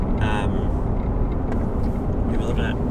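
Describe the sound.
A loud, steady engine drone from a forestry plane flying overhead, its deep rumble filling the whole stretch, with brief muffled voices at the start and near the end.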